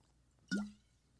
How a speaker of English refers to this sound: Can you swallow in the microphone with a glass of water, please? We just need to measure this really quick for science.